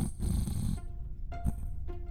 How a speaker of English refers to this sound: Wait, is someone snoring? Got a fella that's snoring somewhere around here. Wait, one more time. See? It's definitely breathing.